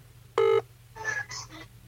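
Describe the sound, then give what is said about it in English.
A single loud touch-tone keypad beep, short and steady, followed by softer, muffled tonal bursts over a low background hum, as a man dials a phone to call his wife. “I'm ringing my fucking wife.”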